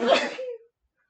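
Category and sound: human body sound, sneeze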